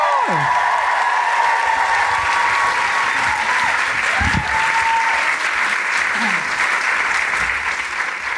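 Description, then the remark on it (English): A large audience in Manchester applauds steadily as a performer is welcomed to the stage, a dense wash of clapping that holds at full strength throughout, with a few whoops and cheers rising above it. “Now, I know you've just clapped, but can I have you cheer and roar again for the trans community?”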